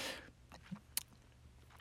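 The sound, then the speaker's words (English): A quiet slurping sip of hot Lipton tea, followed by soft swallowing and a couple of small mouth clicks, with no one talking. “As I take a sip of my beautiful, beautiful tea.”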